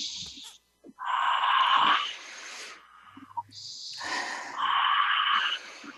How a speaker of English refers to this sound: So it's deep breath in, hands on your heart. And are you releasing, when you release, are you releasing love?